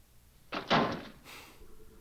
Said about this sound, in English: And then he kicks the door shut with his foot.